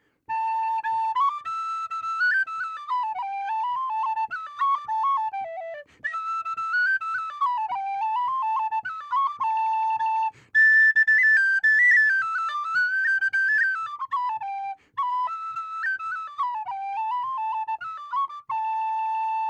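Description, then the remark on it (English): A professional tin whistle player plays a lively traditional Irish tune solo, a tune from a whistle player from Doolin in County Clare. Its bright, pure tone dances through quick ornamented phrases full of grace notes and vibrato, with brief pauses between sections. “You're a professional tin whistle player. Show us what the whistle sounds like.”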